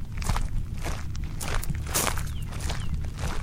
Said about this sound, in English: As we're continuing to walk through the cemetery, there are so many stories to be told for each one of these gravesites, I imagine.